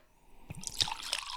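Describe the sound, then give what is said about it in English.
Scotch is poured heavily into a glass with a soft gurgling splash, starting after a brief pause and running steadily to the end, fairly quiet, with no one talking. “Ooh, that's a heavy pour again.”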